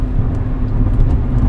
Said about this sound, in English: Look at this guy. Dude, these people on the freeway scare me sometimes. This guy's going like 20 miles per hour on the freeway.